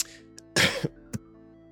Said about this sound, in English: Sorry about that cough, caught me off guard there.